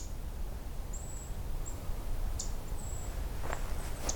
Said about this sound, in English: I think I'm right about the ticking bird. Got a brief look at it.